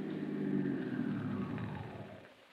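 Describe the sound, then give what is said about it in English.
A car engine rumbles steadily as the vehicle pulls off, its low, throaty drone holding for a moment before fading off toward the end. No voices accompany it. “Instead, I drove right on out.”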